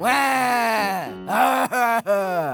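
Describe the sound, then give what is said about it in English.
A voice playing a sheep character imitates a crying wail, drawn-out sobbing tones around a low-mid pitch that waver and break into three swelling bursts, loud and alone with no other talk. “So instead, I will approximate the sound of crying.”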